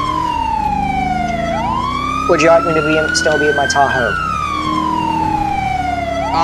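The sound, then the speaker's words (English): A police car siren wails steadily while the car is en route to a call, its pitch sweeping slowly up and down, loud, while a man speaks briefly over it in the middle. “I'm confused, I can't hear over to the sirens.”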